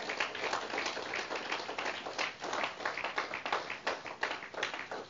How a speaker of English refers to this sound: Let's give them another hand clap.